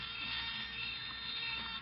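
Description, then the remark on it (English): A steady, thin mosquito buzz drones on without a break for the whole stretch, prominent, with no voices over it. “It isn't a cricket unless it's jet-propelled.”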